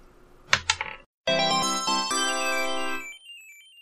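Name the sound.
dice being rolled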